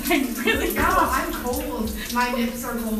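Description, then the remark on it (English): Steady running hot shower water hisses continuously like a shower spray, fairly loud, while people talk over it. “I think you're taking up all the hot water.”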